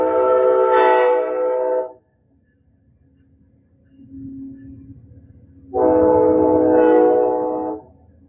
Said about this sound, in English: So hold on, my train is going to go by.